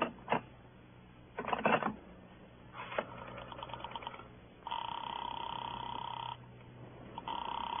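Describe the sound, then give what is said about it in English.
Clicks and clattering bursts of a telephone being dialed to put a call through to Sing Sing, then a steady buzzing ring tone sounds twice over the line, thin and band-limited as if heard through a receiver. “I got to put through a call to Sing Sing.”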